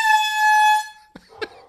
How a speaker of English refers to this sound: Yeah, the dogs don't like the horn.